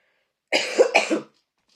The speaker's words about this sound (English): Look, now all of a sudden I'm coughing again.